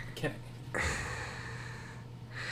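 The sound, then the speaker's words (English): A voice does a heavy imitation of mechanical respirator breathing: a short breathy catch, then a long, hissing rasp that carries on to the end, fairly loud with a steady low hum underneath. “No, not him breathing. Him talking.”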